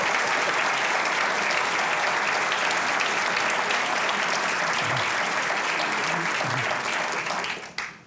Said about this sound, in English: You should be clapping for these individuals. Thank you very much.